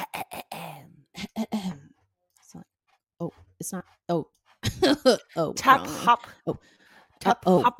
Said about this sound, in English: Let me clear my throat here.